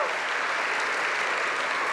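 A steady wash of audience applause, many hands clapping densely at an even loudness throughout, with no voices standing out above it.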